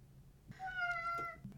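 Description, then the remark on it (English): A single drawn-out meow from an Irish three-legged cat, clear, rising slightly in pitch before trailing off, with only a low background hum around it. “we all said amen, including Cannoli, the Irish tripod cat”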